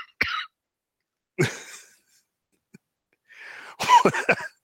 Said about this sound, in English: I cut myself off of coughing there, so that was to sound silly.